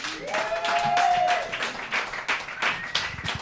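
An audience bursts into sustained applause, many hands clapping in a dense, steady patter with a few whoops and cheers rising over it before it starts to thin out.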